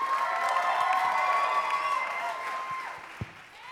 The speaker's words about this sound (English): A round of applause for Mr. Sterling Harris.